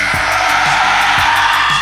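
A loud, sustained, piercing scream fills the whole moment without a break, with faint low thuds pulsing beneath it about twice a second.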